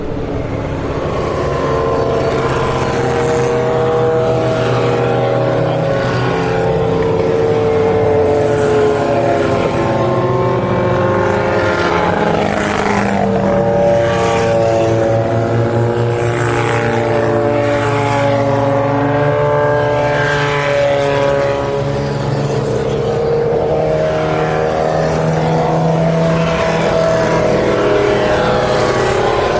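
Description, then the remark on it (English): Engines of several race cars drone steadily in the distance as they approach the Porsche Curves under safety car conditions, led by the safety car with a Mercedes and a Martini Lancia, passing at a restrained pace rather than full speed, their overlapping tones rising and falling continuously with no one speaking. “you'll hear all the cars in the distance approaching the Porsche Curves. They're running under safety car conditions at the moment”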